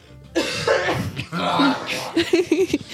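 A sudden sneeze bursts out, followed by a few shorter, breathy vocal sounds that fade off without clear speech.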